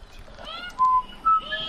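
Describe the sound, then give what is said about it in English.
A man whistles to magpies in a backyard in the morning, two clear, steady notes, the second slightly higher, followed by a couple of quick higher chirps over soft outdoor background noise. “That's me whistling to them.”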